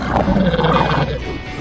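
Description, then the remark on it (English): A loud, guttural alien creature sound effect, a continuous growling roar that rumbles for under two seconds with no voices around it. “Or some aliens.”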